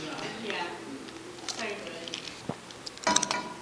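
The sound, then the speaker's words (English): Someone talks while chewing ice, with a few sharp, brittle crunches breaking through the speech, the loudest burst of crunching coming near the end. “Hear me crunching.”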